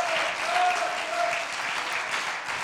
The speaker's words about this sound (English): Could you clap your hands unto the Lord again? Oh yes.